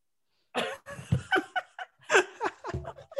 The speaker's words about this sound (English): You all right? You don't need to be coughing like that. And you know what I mean? Like, you gotta have to mute yourself if you coughing like that.